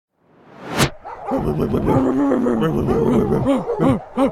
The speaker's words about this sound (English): There's a lot of dogs here.